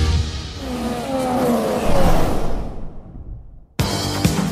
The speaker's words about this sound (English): Lando Norris leads the British Grand Prix from Max Verstappen and Oscar Piastri. You can hear the roar.